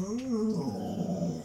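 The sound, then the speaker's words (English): A dog lets out a rising, whiny vocalization that slides into a low, rumbling growl in a studio, continuous for about a second and a half. “It's just me and the dogs in the studio today.”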